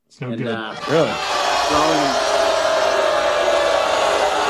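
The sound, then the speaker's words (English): A few raised voices break out, then swell into a loud, steady roar of crowd noise that holds without letting up until the end. “That was the crowd.”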